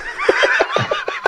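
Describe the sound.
A person does a quick imitation of a horse whinny, a shrill, quavering call broken into rapid pulses that rises and wavers for just over a second, with no other talking.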